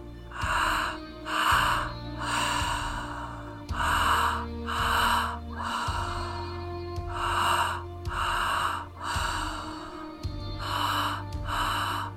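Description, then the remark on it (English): Deep, rhythmic breathing during a guided breathing exercise, loud, with forceful breaths repeating in a steady pattern over a soft, sustained musical drone. No one speaks. “You know you can continue to breathe through it.”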